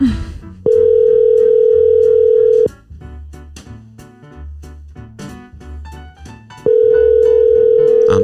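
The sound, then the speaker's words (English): A phone's outgoing ringing tone sounds twice, each steady buzzing ring lasting about two seconds with a long pause between, loud and clear over soft background music. “Get the phone call going.”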